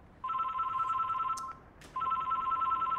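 A telephone rings at a hair, laser and beauty clinic in Punchbowl with a steady electronic trill, two long bursts separated by a short pause, loud, with no one speaking.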